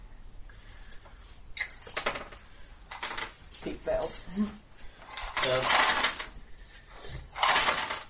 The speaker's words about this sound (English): I need to actually roll a couple of these dice, okay?